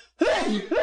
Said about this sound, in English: Oh man, I wish I had the echo on that, don't you guys? On that sneeze that I just landed, all natural sneeze landed on Click and Get.